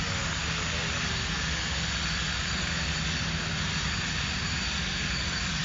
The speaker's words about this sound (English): That is the saw and the jackhammer combination. I guess they're digging up a driveway or something like that, and I don't know why it had to be completed last night.